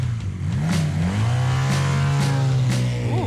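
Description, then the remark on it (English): A motorcycle engine rumbles loudly, holding a steady throaty drone before revving upward in pitch near the end. No one speaks. “That sounds like a motorcycle.”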